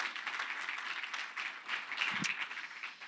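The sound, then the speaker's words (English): A room full of people applauds steadily for the 2015 Programs Committee before the speakers step up, a dense, even wash of many hands clapping at once that holds at a moderate level throughout without any voices rising above it. “So if we can just give them a round of applause, that'd be great.”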